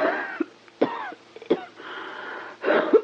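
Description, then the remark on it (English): A bad, wheezing cough: several harsh, raspy coughs in a ragged series, each followed by a strained, whistling wheeze as breath is drawn in, fairly loud with no talking. “That cough really is bad.”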